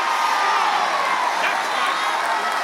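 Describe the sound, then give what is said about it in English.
A crowd of voices, answering a call to shout, shouts and cheers together in a loud, sustained roar that holds steady for a few seconds without a break. “You got a job this morning. Shout.”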